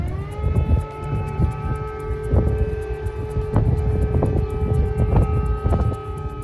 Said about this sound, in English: Meanwhile, air raid sirens sounded across the capital, Kiev, early this morning as it came under missile strikes.